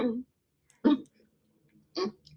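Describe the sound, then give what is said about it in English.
Three short, throaty bursts of coughing and throat clearing from a person with asthma, spaced roughly a second apart, moderately loud, with silence between them and no talking. “Sorry, I have asthma and I'm constantly coughing.”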